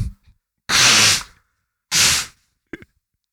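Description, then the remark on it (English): Someone blows their nose twice, each a loud, rough, hissing burst about half a second long, followed by a short snuffly click. No one talks. “Y'all mute my mic so I can blow my nose.”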